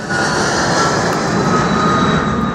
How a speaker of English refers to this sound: Helicopters and air tankers dropped water and fire retardant